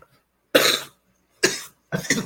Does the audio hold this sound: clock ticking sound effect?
no